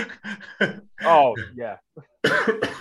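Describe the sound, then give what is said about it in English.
A few rough, raspy coughs and some throat clearing from someone in the evening, broken up by short voiced, groaning sounds, ending in a burst of harsher coughing. “so my cough was just worse in the evening, so it's a bit frustrating doing it in the evening,”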